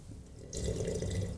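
A loud, wet slurping sip of a drink starts abruptly after a brief quiet moment and carries on for under a second, hissy and bubbly with no talking.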